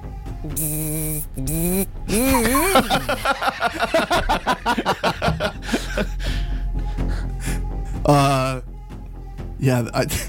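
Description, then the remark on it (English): A man's voice buzzes and hums in imitation of a wasp, with wavering pitch sweeps, rapid pulsing bursts and sharp hissy breaths, fairly loud throughout. “Yeah, that was a man pretending to be a wasp.”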